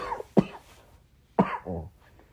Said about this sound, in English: I got the little cough here and whatever. Nothing major.